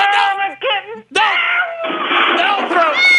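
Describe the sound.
A voice imitates a kitten screeching as it is thrown with a catapult: loud, wavering yowls with sliding pitch, broken by a brief sharp smack-like burst, then a long shrill wail that keeps going to the end.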